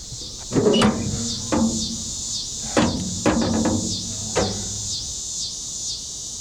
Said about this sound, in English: Interesting how the cicadas' sounds come and go.